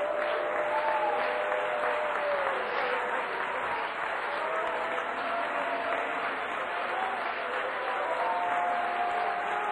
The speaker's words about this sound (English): Keep worshiping God. Start clapping your hands like the trees.